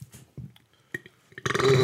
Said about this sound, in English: Man, you know what? Our regular audience is not used to this much burping. I apologize. I get acid reflux sometimes, and I had pork and beans for dinner.